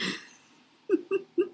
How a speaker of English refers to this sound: Bless you. Some very tickly allergen just came in the window or something.